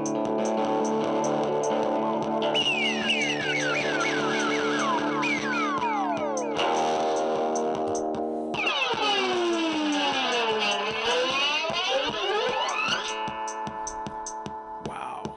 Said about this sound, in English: Spaced out there. That was fun. Wow, I haven't done that forever. This King Oscillator thing, yeah.